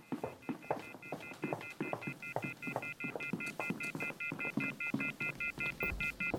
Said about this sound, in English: The wall phone. It's off the hook, hanging down to the floor.